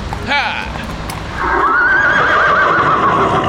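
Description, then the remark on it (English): A horse gives a short neigh, then after a pause a long, loud, quavering whinny that wavers up and down for about two seconds, over a steady noisy background. “Is your horse a good horse?”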